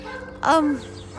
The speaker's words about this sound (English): I always have dogs barking in the background. I'm sorry about that.